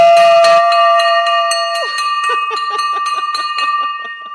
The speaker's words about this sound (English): We are ringing the victory bell for that. That is awesome. I love it.